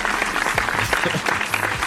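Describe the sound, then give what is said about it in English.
A steady burst of applause, many hands clapping in a dense, even patter at a fairly loud level, with no voices over it. “Clap it up for episode 60.”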